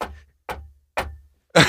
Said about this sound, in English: Who knocked?